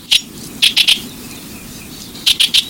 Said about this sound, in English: With a little planning, your garden can be a haven for birds like this Buick's wren all year round.